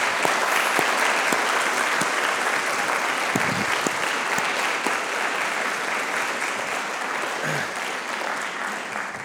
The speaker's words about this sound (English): So could you just express some appreciation to her right now? Yes, with clapping, yes.